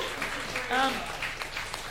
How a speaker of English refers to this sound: How brave. Let's just give him a round of applause. Well done, you.